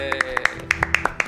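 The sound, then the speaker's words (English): A brief burst of applause introducing a review of season 3 of the show One Day at a Time: about ten sharp, quick claps in an uneven rhythm, moderately loud, over a steady low tonal hum. “After this season, I don't know if it's my favorite anymore, but One Day at a Time. Applause.”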